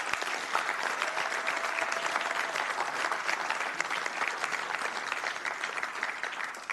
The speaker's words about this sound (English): You've done a great job of letting us know how great this team is, and I want us to give them another big round of applause, if we will.